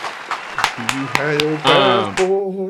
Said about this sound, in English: Round of applause for the Pregame on Twitter.